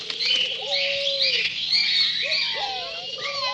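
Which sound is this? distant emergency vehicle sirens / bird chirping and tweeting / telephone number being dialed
bird chirping and tweeting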